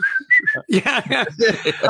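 A few short, bright whistled notes rise and fall in a quick melodic phrase, followed at once by a voice carrying on over the rest of the moment.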